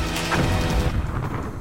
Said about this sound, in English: And this energy, this necromantic energy meeting this healing energy, is coming together and creating explosions in the air that rain down top everybody you are passing.